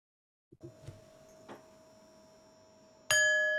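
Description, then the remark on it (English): A soft meditation bell tone rings and lingers, then a second, much louder bell is struck and rings out with a bright, sustained shimmer, marking the end of a meditation. No one speaks. “You will hear the sound of the bells when it's time to come out of the meditation.”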